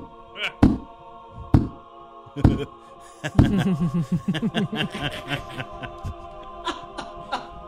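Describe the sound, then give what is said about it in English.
Several hollow thumps and knocks ring out as a wooden confessional door is jostled and pulled open, followed by a stretch of soft, rhythmic chuckling. “Sorry, I'm having trouble with the confessional door.”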